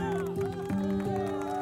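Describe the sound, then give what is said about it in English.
A small team cheers with sustained whooping voices while light clapping patters underneath, fairly loud, lasting under two seconds. “That's my team behind me. They're clapping.”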